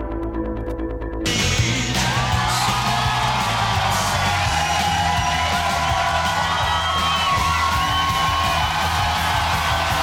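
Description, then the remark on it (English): A large crowd cheers, whoops and yells loudly and continuously, a dense wall of voices calling out for more, after a brief low musical hum at the start. “This is the fucking Encore. The crowd wants more.”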